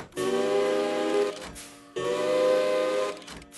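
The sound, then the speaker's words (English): Two tiny engine whistles pop out of a whistle clock as its big hand strikes 12 and blow one after the other. Each is a loud, steady, reedy toot lasting over a second, with a short gap between them. “But as the big hand struck 12, two tiny engine whistles popped out and made a wondrous sound.”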